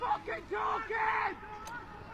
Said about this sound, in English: Leitrim Gaels still shouting the instructions out from the goals. And apologies if you picked that up. There's a bit of foul language in there as well.